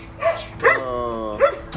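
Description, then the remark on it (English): A dog barks in a few sharp, uneven bursts, with a drawn-out whining yelp stretched between them; no one speaks. “Okay, dogs, take it. The stage is yours.”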